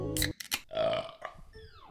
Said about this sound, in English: I just had a great burp.